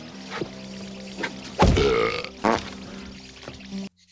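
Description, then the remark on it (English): A loud, drawn-out belch rumbles up midway, followed quickly by a shorter second burp, over a low steady hum with a few faint clicks before it. “I ate too much cheese. Now I can't burp.”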